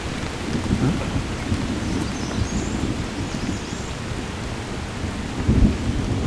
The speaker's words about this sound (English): Bit of thunder.